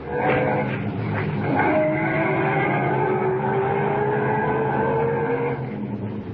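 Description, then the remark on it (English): A car engine revs up and pulls away up the road, its pitch climbing steadily over several seconds, loud with a hint of tire squeal, no voices. “Get back in the car and head up the road again.”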